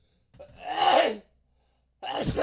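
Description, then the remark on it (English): A fairly loud sneeze, a drawn-out breathy intake rising into a burst, then a short pause before a second sharp, noisy expulsion at the end. “Excuse me. Bless you.”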